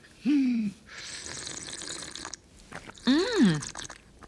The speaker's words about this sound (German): Und heißes Wasser. Ah, here we go.